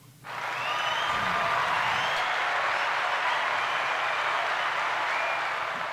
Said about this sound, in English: you're doing your thing. Hand claps to you.